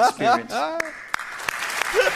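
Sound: clapping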